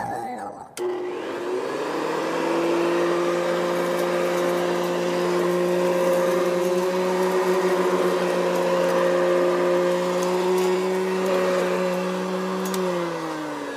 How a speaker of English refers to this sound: sounds like somebody took out the vacuum cleaner.